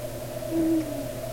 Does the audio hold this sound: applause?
no